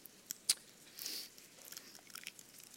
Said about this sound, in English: Top flap gets you the wafer. Bottom flap opens up the juice.